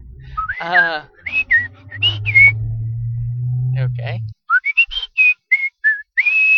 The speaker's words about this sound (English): Some nice whistling. Yeah, that's shark whistling. That's some top-notch whistling.